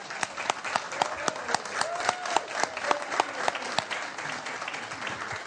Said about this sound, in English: Thank you. Nice job. You can clap.